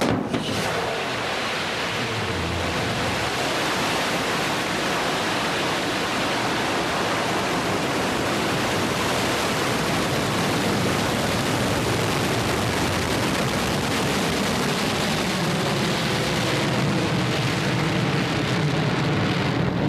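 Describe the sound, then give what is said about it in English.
A thunderous, steady New Shepard rocket-engine roar at launch fills the whole stretch, a dense, unbroken rumble and hiss that stays loud from start to finish, with no voices. “5, 4, command engine start. 2, 1.”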